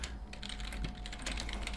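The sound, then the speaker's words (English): Rapid, continuous typing on a computer keyboard, a dense stream of quick plastic key clicks at steady volume with a low hum underneath and no voices. “Listen to that typing. So fast.”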